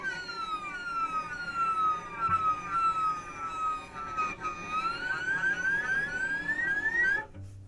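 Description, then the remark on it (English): A musical effect known as a whale sound or seagull glissando: high, wailing tones that slide continuously up and down in pitch, repeated swoops over a low rumbling background, with no one speaking. “That's what's typically known as a whale sound or a seagull gliss.”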